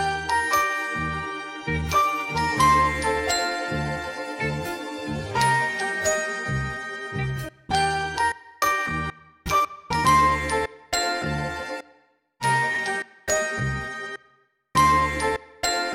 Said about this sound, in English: but I've chopped each note out very individually so I can have more control over their arrangement. So I kind of arranged these bells and vibes into a new melody with a new rhythm, much different from the one in the original song, which you'll hear.